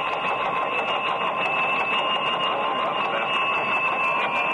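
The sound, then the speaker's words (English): A United Press teletype machine clatters steadily as it prints a news flash after Japan's acceptance of the Allied surrender terms, a dense, even mechanical chatter with a thin high whine running through it, and no voices. “Another flash is coming in on the normal United Press wire now.”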